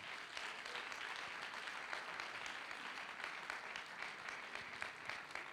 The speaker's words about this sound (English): Give your pastor and his precious wife a big hand clap.